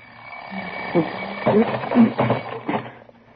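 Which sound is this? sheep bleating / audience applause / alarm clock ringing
alarm clock ringing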